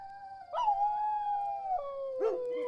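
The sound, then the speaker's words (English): Sustained animal howls with long, wavering tones, one stretched howl followed by another rising cry, clear with no talking. “We sat listening to the howls.”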